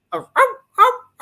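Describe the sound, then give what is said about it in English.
A person mimics a dog barking, giving four short, loud woofs in a quick, fairly even rhythm with brief gaps between them. “it was a human doing a dog's bark”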